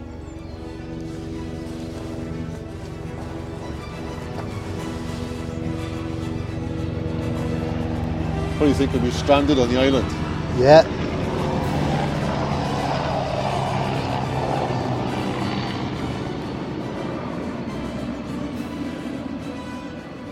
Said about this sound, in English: Oh, let's wait this helicopter goes.